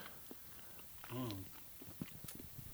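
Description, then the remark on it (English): Wet chewing of a Habanero Chipotle chicken wing from a restaurant in Bigfork, Montana, with soft smacking and crunchy clicks, broken by a brief hummed, voiced murmur near the middle. “That was some wet chewing.”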